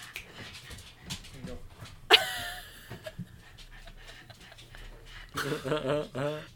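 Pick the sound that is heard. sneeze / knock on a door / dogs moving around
dogs moving around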